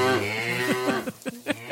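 A cow lets out one long, low, droning moo that fills most of the moment, fairly loud, followed by a few short, sharp taps as it fades.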